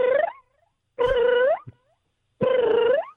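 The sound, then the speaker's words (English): Someone imitates a cat's chirping call, a sound they make back and forth with their pet cat: three short trilling chirps that each rise at the end, spaced about a second apart with silence between, fairly loud. “And then what we do to each other, that's really fun. I never had another cat do that. And we make this kind of a sound.”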